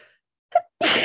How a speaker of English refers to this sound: Bless you. What happened? That was such a cute sneeze.